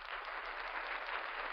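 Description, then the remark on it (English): An applause sound effect: a steady, dense wash of crowd applause, many hands clapping at once in a continuous hiss-like texture that holds level for the whole moment, with no voices. “Give it up, give it up. We got applause now.”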